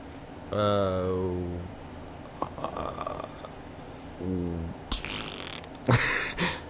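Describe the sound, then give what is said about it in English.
A voice blows a buzzy, drawn-out mouth fart that sags in pitch, followed a few seconds later by a shorter raspberry. Sharp, noisy bursts of breath or laughter come after. “See, I made the fart sound, and it mm-hmm. got me to stinky.”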